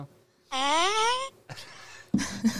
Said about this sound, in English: Is that a moan? I'm just gonna keep my finger on it. Is that the old moan noise? Oh, it's a fart. That's a fart? Know? It sounds like a moan to me.